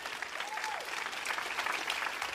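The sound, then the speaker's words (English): A church audience claps steadily during a sermon, a dense, even wash of many hands with no pauses, holding a constant loudness throughout. “Come on, somebody, now you can clap.”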